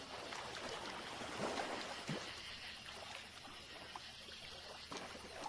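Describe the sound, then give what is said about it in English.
Deer wade through a stream, their legs sloshing and splashing in a few soft, irregular bursts over the steady rush of running water. “Like some deer crossing the stream.”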